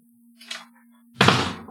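A faint scrape or click, then a loud, full-bodied thud of an apartment door shutting, with a steady low hum running underneath throughout.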